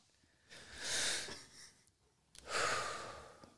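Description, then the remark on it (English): Two loud, heavy breaths rush into a microphone, a long airy exhale followed by a pause and another forceful breath, with no talking. “Can we cut out those breathing noises?”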